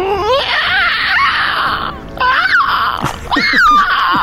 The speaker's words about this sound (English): Where did you find that online cockatrice sound? Yeah, it was on YouTube. I just pulled it up. Yeah, totally. It was actually captured by a real cockatrice in the wild. Sounds authentic.